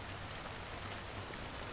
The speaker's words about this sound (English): I have nothing to shield me from this rain.